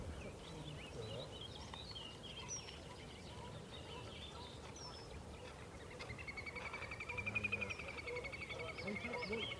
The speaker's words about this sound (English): That is, that's the little grebe. Always sounds like a really squeaky motorcycle trying to start up.